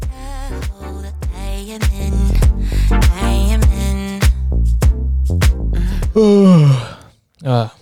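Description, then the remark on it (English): A person lets out a long, loud yawn that slides downward in pitch after several seconds of busy vocal sounds, then a short breathy noise follows. “Nice yawn, buddy.”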